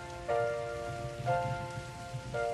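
Steady rain patters throughout, a continuous hiss of drops on a surface, while sustained musical chords sound over it, swelling in about once every second.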